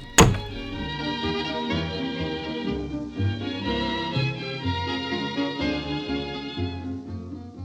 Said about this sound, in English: And they cross the lot over to his and head back inside, the door shutting behind them with a click.